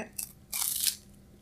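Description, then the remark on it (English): Someone bites into a crunchy Japanese wafer snack from a Boksu subscription box: a brief crisp crackle, then a longer, airy crunch lasting about half a second. The sounds are soft overall, with no talking. “It sounds pretty crunchy and like soft.”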